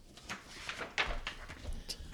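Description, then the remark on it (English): The heavy door of the Vault of Knowledge, deep within Castle Grayskull, grinds open with a run of scraping, clanking knocks and a sharp metallic clunk in the middle, moderately loud with no voices. “He-Man said as the vault door began to open.”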